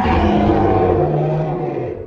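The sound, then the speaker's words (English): A monster, its legs pierced by spears, lets out a loud, sustained scream with a harsh, growling texture and wavering pitch as it tries to retreat in a cavern, holding for about two seconds before tapering slightly at the end. “A deafening, anguished scream burst forth as it attempted to retreat, but escape was impossible.”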